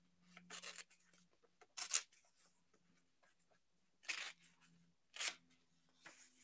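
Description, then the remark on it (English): Paper being torn along a fold in several short, rasping bursts, fairly quiet, with pauses between rips over a faint low hum and no talking. “Now, take the paper and tear it down the folded area.”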